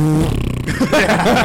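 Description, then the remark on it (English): A voice imitates an underpowered four-cylinder Jeep Patriot accelerating, a strained, buzzy drone that wavers and climbs unevenly in pitch for about a second and a half, fairly loud and with no other sounds. “That's the Jeep Patriot accelerator.”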